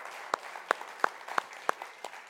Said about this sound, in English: First thing, I'd like us all to give the worship team a round of applause. They did a phenomenal job this morning.